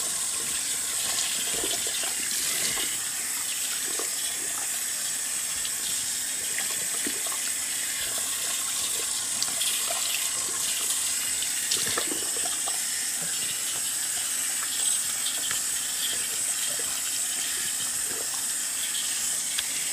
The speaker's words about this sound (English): Right, so my hair is rinsed out efficiently. That water is hot. I use cool water. Rinse it out. When I wash my hair, I use warm water because that opens the cuticles and gets them in the field.